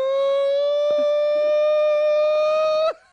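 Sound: siren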